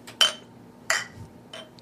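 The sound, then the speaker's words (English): Glasses clink together in a toast, three bright, ringing taps spaced unevenly over a couple of seconds, each one short with a high, glassy shimmer and no voices. “Alright, let's cheers.”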